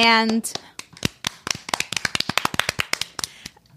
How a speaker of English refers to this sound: I mean, he was incredible. So I think he deserves a big clap.